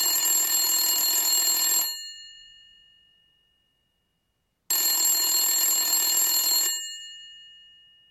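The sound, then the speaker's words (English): A telephone rings in two loud, bright bursts of about two seconds each, with a trembling bell tone that rings out and fades between them. No one speaks. “Let's just start with a call.”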